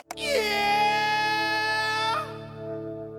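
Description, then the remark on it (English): A man lets out a loud yelping whoop in a 1993 alternative rock hit. The bright vocal cry scoops up, holds steady for about two seconds, then breaks downward over steady band accompaniment. “this yelp, this whoop of virile gregariousness that punctuates his band's 1993 hit”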